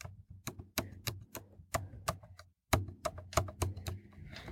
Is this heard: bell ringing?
no